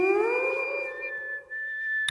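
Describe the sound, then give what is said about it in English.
A spun ribbed straw whistles a sustained, eerie harmonic tone with a high, steady pitch and a low hum beneath, gliding slightly like humpback whale song, with no talking. “So you remember those tubes you would spin around in the air and they would make the whistling sound.”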